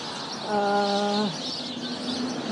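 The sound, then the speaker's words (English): A dense, constant chatter of many small brown birds packed inside a tree, a bright overlapping wash of chirps that stays steady throughout, with a brief lower droning call rising out of it partway through. “there are some trees I'm approaching that are just completely, like, I mean, obviously, this is, like, high-density housing for these birds, and it is loud.”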